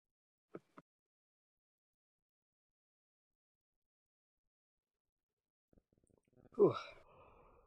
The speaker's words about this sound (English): Oh, God, stop yawning. It's making me tired.